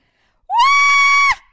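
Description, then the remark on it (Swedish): A woman lets out one loud, high-pitched scream that swoops up sharply, holds a steady shrill tone for nearly a second, then breaks off abruptly, with no talking around it. “Vet du hur jag skrek?”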